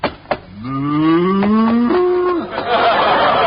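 A cow lets out a single long, loud moo, its low harmonic call rising slightly before breaking off, with some rustling background noise around it.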